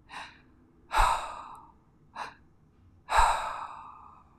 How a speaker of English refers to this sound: She starts breathing heavy.